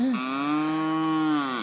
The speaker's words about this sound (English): Moo! Woo! Oh, I love this. This is why I like coming outside in nature. It's cool, isn't it? Oh, I love this. Attack of the cows.